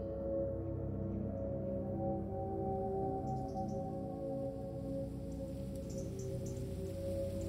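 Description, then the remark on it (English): Steady autumn rain on Colorado's Front Range falls in a continuous, even wash of noise, with a faint tonal hum underneath and no voices present throughout. “Flurries of golden leaves skittered through the streets until the rain came.”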